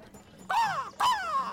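A loud two-note cuckoo-like call, each note sliding downward, voiced by a person imitating a bird as a signal, with no other talk around it.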